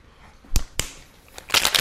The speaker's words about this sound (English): Then you're going to shake it with your ice.